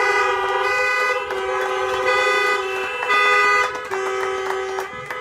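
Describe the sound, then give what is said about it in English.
A chorus of car horns honks together in a loud, continuous blare for several seconds as a tribute to mothers, overlapping tones shifting as individual horns cut in and out, with no talking. “If you're here today and you have a mother who's represented God and showed some love, can we give the next 15 seconds a honk break bragging on your mom?”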